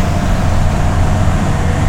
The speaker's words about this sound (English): Look! Headlights! This is Post 7. We've got a vehicle. Looks like a truck or SUV inbound off the country road. It might be headed in the direction of the back gate.